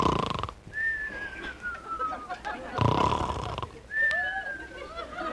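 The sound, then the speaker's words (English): A man snores loudly: a raspy inhale followed by a long whistling exhale, repeated twice, with some muffled sleepy mumbling in between. “Every night it's the same thing, snoring and mumbling.”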